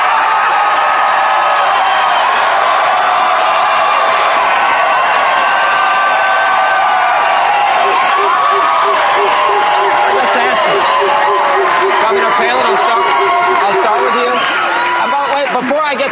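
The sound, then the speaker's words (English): A large crowd cheers and applauds continuously, a loud, dense roar of clapping and shouting voices that holds steady for the whole stretch without easing off. “I want to ask this last question for both of them, and I want your reaction in the crowd.”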